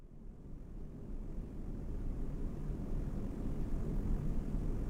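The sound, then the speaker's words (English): A spacecraft, a disheveled thresher ship, roars through re-entry into the lean Nessian atmosphere, a dense low rumble with rattling texture that swells gradually louder and never lets up, with no voices. “Our disheveled thresher rattles through lean Nessian atmosphere. Callus' words ring in my ears over the storm rush of re-entry.”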